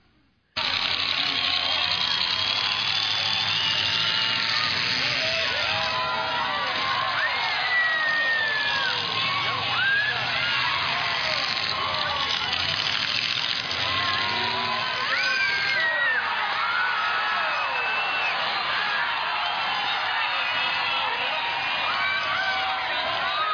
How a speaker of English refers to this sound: I posted this video of the car demolition. So if you want to see how much fun it was, check this out.